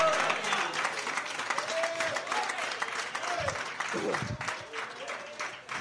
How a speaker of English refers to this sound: I know that God will bring you out. Come on, clap your hands and say hallelujah.